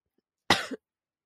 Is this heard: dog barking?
no